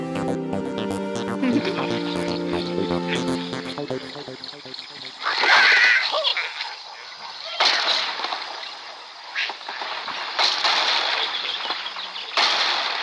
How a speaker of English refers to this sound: We're trying to make a vegan radio show, and you're pretending to make birds hurl themselves at pigs. Oh, sorry. I was just trying to look at all the vegan apps on my smartphone, and I got distracted.